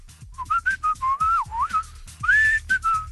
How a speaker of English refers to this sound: That whistling?